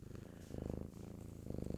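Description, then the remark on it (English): A pet cat purring, a steady low rumbling with a rhythmic pulse that swells and eases with each breath, heard alone without any talking. “Oh, look, while I'm recording this episode, my cat decided to come in. Let's see if we can get some kitty cat ASMR here.”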